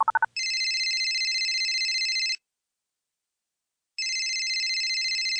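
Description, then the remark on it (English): A brief dialing tone gives way to a telephone ringback on an outgoing call: two long, steady electronic rings separated by a pause of silence, clear, with no voices. “Get Vegas Girlfriend on the phone.”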